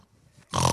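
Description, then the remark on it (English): After a near-silent pause, a voice lets out one loud, rough, snorting snore imitation, harsh and nasal like a pig's grunt, lasting only a moment. “Now, I don't know if Jesus snored.”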